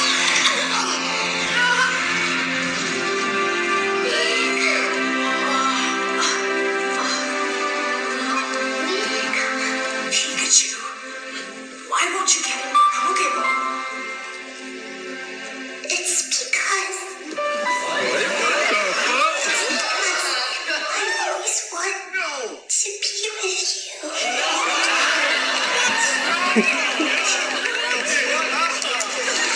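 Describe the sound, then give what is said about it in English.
A packed cinema audience of Pokemon fans reacts during a screening of a Pokemon film, with bursts of excited chatter, laughter and cheering rising over the film's steady soundtrack, loudest in waves through the second half. “Have you seen the clip online of people in the theater, all these Pokemon fans reacting to that?”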